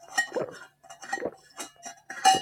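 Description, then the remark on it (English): Water being chugged from a glass: a run of quick gulping swallows broken by short pauses, with bright clinks of glass mixed in. No one speaks. “I was chugging water.”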